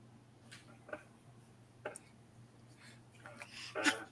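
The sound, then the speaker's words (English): A single abrupt sneeze bursts out near the end, preceded by a few faint clicks and soft breathy noises over an otherwise quiet low hum. “Bless you.”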